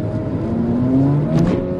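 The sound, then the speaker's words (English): Car engines rumble and rev steadily, the pitch climbing slightly as one accelerates, with a brief whooshing burst near the end. “And we hear the engines rolling.”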